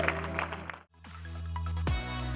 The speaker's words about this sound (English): And everybody said, amen. Come on, clap. You did great today.